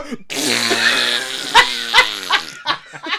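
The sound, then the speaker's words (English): A person blows a loud, close mouth-farting noise, a sustained buzzing raspberry lasting about two seconds, followed by several short sputtering bursts that imitate farts. “these guys together are worth over $1 billion, and it's them fucking in horrible accents making farting noises.”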